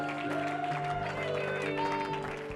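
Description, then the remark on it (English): A large audience at a church service in Tyler claps steadily under sustained music and voices, the dense crackle of many hands at a lively, even pace. “Come on, clap your hands, open up your mouth and declare, victory is mine.”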